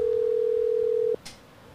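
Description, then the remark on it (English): A phone line rings while a call goes through: one steady, mid-pitched ringback tone holds for about a second, then cuts off, followed by a brief soft click. No one speaks. “I'm about to call him right now.”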